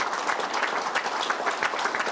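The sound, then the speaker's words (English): Steady audience applause for everybody involved in Florida's tourism industry, a dense crackle of many hands clapping at an even, sustained loudness with no voices rising above it. “So let's give a big round of applause for everybody involved in the tourism industry.”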